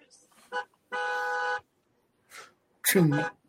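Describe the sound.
A car horn gives one steady, sustained honk lasting under a second, loud, with short bursts of people's voices just before and after it.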